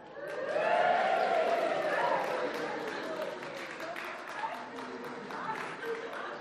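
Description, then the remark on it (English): An audience cheers and claps at the banquet scene of a retelling of the story of Esther, swelling quickly to a loud, dense roar of voices and applause that carries on steadily for several seconds before easing slightly. “Give a big cheer for Esther.”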